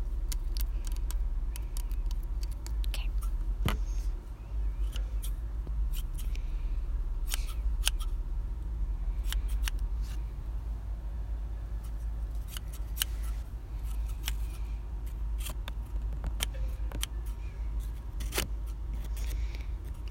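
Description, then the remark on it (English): Scissors snip again and again, trimming the ends of hair tied in a ponytail, in short, irregular bursts, crisp little metallic cuts over a steady low background hum, with no one talking. “Now, I'm just going to start trimming the end. If that's all right with you. Scissors aren't too sharp.”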